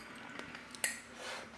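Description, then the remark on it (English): Someone gulps a drink of water: a few soft, wet swallowing clicks spaced irregularly, one sharper than the rest, over a faint steady hiss with no talking. “Oh Christ, that was a good glug of water.”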